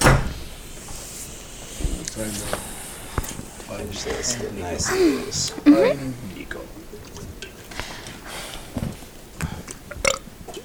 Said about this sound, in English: Is the door shut? No, I want to shut it all the way.